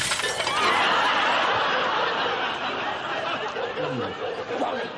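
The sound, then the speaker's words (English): A loud burst of shattering glass as a hotel window is smashed by a thrown stone at night, followed by a scattered tinkling of falling shards, with faint laughter and murmuring voices underneath. “But of course, Del picks up a slightly larger stone, smashes the window, and they're left running off into the darkness as the entire hotel wakes up.”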